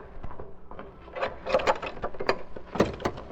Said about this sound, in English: Open the door.